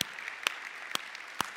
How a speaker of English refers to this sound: If you're here tonight and you say, man, I'm going to be faithful in praying for the work that God's doing, not just in English here, but in Spanish, would you just give an applause and say, yeah, I want to do it.